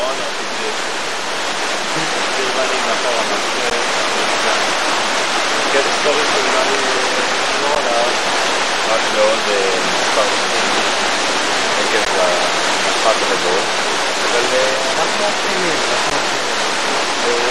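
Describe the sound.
Loud rushing stream water roars steadily, a dense, unbroken wash of very strong, churning flow with an unusual current, at a stream in Israel, that never lets up. A voice may be faintly buried beneath the noise.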